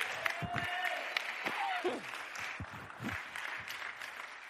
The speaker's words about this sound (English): Somebody clap your hands and give God a shout of praise.